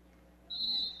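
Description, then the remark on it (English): A referee's whistle at a basketball game blows one sharp, shrill blast that starts midway and holds for about half a second, loud over a low, steady background rumble, calling an offensive foul away from the ball in the fourth quarter. “And we've got a whistle away from the ball again.”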